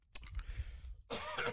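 A cough drop is popped into the mouth, heard as a short burst of wet mouth and tongue noises, then a louder smacking, sucking sound, with no talking.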